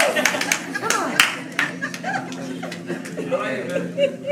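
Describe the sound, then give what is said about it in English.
An audience claps in loose, scattered bursts, sharp slaps ringing out irregularly while excited voices call out and chatter over the applause. “Let's clap.”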